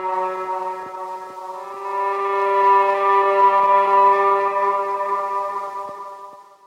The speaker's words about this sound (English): And here's the whole wind section through some tape echo.